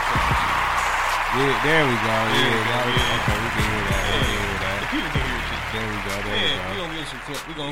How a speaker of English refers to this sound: Where the little clap? You know what? We're gonna give him a clap. There we go.